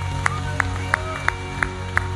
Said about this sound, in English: And we give God a shout of praise in this place. Clap your hands, lift your voices.